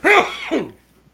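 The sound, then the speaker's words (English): A loud sneeze bursts out sharply, followed by a short voiced tail, then quiet. No one speaks. “Bless you.”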